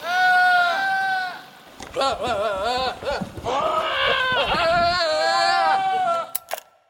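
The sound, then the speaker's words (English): Several goats scream and bleat in loud, wavering, almost human-sounding cries that overlap and trail off, with one harsh bleat opening and a chorus of wailing calls filling the rest. “That was goats.”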